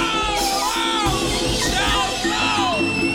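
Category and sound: crowd, screams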